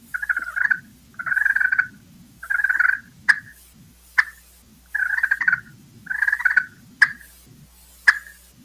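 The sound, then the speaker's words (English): A turkey call gives a soft turkey hen purr, a series of low, rolling, fluttering bursts about a second long, broken up by a few sharp clicking notes. No one speaks. “So I would do just a simple purr.”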